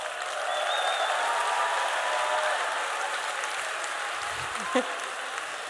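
A crowd applauds for the speaker's son, steadily for several seconds, a dense wash of clapping that holds an even level throughout, with a brief louder knock near the end.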